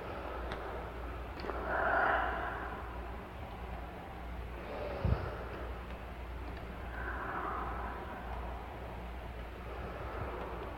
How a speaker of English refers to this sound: Breath as we come up, coming right down into the belly, breathing out, letting go into the earth as we come down, releasing all that we're holding in our shoulders.